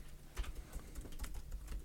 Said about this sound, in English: In the midst of people typing